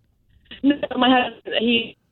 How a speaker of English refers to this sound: This might be the best phone call we've had all year, and it's breaking up. You there? Can you hear me?